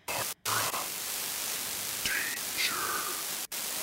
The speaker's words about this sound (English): Did you hear that? In the static? Yeah. What was it? It kind of sounded like a carrier signal, like a radio wave.